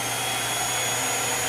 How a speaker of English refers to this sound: The Blaine Titanium 5 is a complete canister vacuum system featuring a 4.6 quart air clean dust bag with spring-loaded self-sealing collar, HEPA air filter, and lightweight skeleton construction.